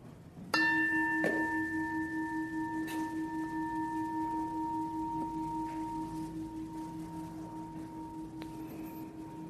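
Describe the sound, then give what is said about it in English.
A single meditation bell is struck once to begin a meditation practice, its bright tone ringing out and slowly fading over several seconds with a steady, shimmering sustain. “And so we'll begin this ritual with the sound of a bell.”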